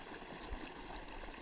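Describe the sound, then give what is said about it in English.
A steady, even wash of flowing stream water, rushing and babbling softly without any break or change in level. It is fairly quiet and continuous, with no voices or other sounds. “And where we hear this water, there we are at home, because we have the security of securities to live with and for and by this water.”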